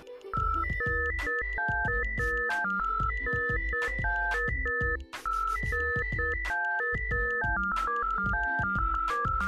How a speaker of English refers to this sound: That's exactly how we feel every time we write down the notes and compose it again on one of those Nokia mono ringtone composing phones. Alright, let's hear it.